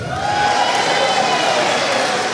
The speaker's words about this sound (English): See, all you got to do to get applause in this organization is mention something like that, and people get a little excited.